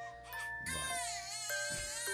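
A baby cries loudly in a strained, wavering wail that rises and falls across a couple of breaths, with a faint steady tone running underneath.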